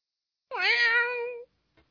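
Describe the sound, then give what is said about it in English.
A single drawn-out cat meow, clear, rising then sliding down over about a second, followed by silence and a tiny faint click. “Ugly ass cat. Yeah, Beautiful cat.”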